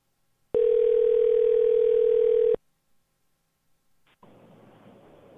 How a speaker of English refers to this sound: It's ringing. It's good. Always a good sign.